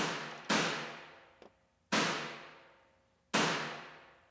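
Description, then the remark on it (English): Three evenly spaced snare hits drenched in a separate mono room-mic reverb sample, each a sharp boomy crack with a long washing decay, almost gunshot-like. A faint small tap falls between the first two. No voices. “The other thing I added is a separate sample, a mono reverb for the snare.”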